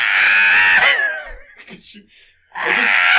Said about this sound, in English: that's absolutely what happens when people scream on the bus